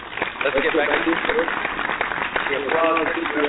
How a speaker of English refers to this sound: And then get right back to it after the applause is over. You got to let the applause roll.